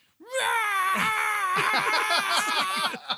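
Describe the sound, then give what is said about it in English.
A person loudly imitates a death metal scream, one sustained, strained vocal howl lasting about three seconds that breaks into rapid pulsing bursts toward the end. “I'm always wondering if you're, like, is this going to be good or is he just going to be screaming on the other end?”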